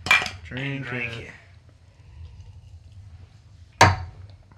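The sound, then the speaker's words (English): Glasses clink together in a toast: a bright knock with a short wavering ring at the start, a quiet stretch with low rumble, then a second sharp clink near the end. “Clink it.”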